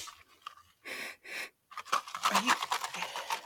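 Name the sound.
sniffing a drink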